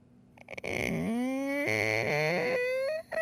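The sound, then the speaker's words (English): A voice imitates a creaking cellar door: one drawn-out, strained groan that slides up in pitch, turns rough and grinding midway, then rises again before cutting off. “Creepy the cellar creaking door.”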